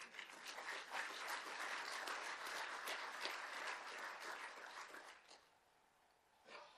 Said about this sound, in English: It is not upon you to give yourself a round of applause, but today I want you to do that.